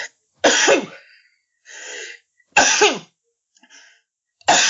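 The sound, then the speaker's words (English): A run of sneezes: three loud, explosive bursts spaced about two seconds apart, each preceded by a softer breathy intake, the last one cut off at the end. No talking. “because I'm going to sneeze, so bear with me.”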